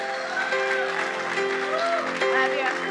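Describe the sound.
An audience claps steadily and loudly, a dense rush of hands with cheering voices and sustained tones mixed through the applause for the whole stretch.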